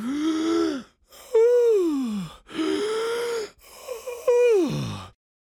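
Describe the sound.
Four loud, voiced gasping breaths in quick succession from a girl sitting on the ground with her arms around Mercy the pig's neck, each a strained, moaning heave that rises and falls in pitch, with brief pauses between and no words spoken.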